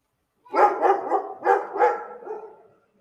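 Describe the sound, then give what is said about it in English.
A dog barks in a quick run of five or six loud barks, tapering off slightly at the end, with no one talking over it. “I paused once again because the dog is so stupid.”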